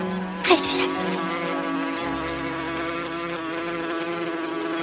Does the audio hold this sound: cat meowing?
no